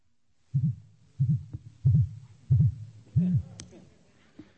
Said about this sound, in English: Okay, so that tells you we've heard four beeps. And, sorry? Okay, four beeps. Each one of those beeps indicates the battery status. So one beep would indicate 25%, two beeps, 50%.